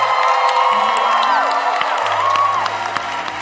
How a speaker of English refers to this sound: Clap for them as they go back to their seats. Clap for them. Clap like you're excited about salvation.